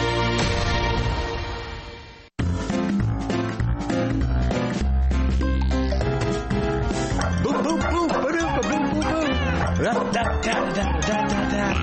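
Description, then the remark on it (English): Dogs bark and yip repeatedly in the musical intro of Warren Eckstein's radio program The Pet Show, over a loud, upbeat musical backing, the barks woven into the tune after a brief break in the music. “Bring your dog to the radio speaker and see what their reaction is to the dogs that Warren Eckstein loves as the star of his musical intro every week.”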